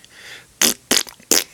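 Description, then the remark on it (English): Three short, sputtering fart noises in quick succession, each a bright, noisy burst with brief gaps between them. No one talks, and the sounds are fairly loud. “Everybody can leave a fart.”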